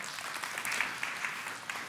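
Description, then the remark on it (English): A crowd applauds with steady, dense clapping, a bright crackling wash of many hands with a few sharper claps standing out, moderately loud and sustained throughout. “All right, give those guys a little round of applause.”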